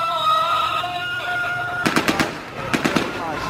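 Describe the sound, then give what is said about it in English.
Two quick bursts of celebratory gunfire, a rattle of four sharp cracks followed shortly by three more, after a stretch of sustained chanting and prayers, as Syrian rebels celebrate capturing an army base in Mayadeen, eastern Syria. “The rebels celebrated with prayers and gunfire.”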